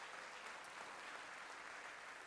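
An audience claps steadily, many hands blending into a dense, even wash of applause that holds at a constant level for the whole stretch, with no voices breaking through.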